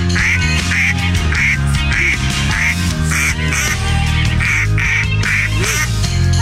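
A duck quacks repeatedly in a steady rhythm over a loud, full band track, the nasal quacks landing like a sung vocal line on top of the music.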